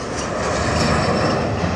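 A loud, steady airplane engine roar fills the short stretch, a dense continuous drone with no breaks and no voices.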